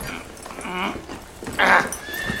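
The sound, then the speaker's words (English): A horse in a stable whinnies, two wavering, quivering neighs in quick succession, the second louder and higher, over a low background with no talking. “I fed and wiped down this horse here, so...”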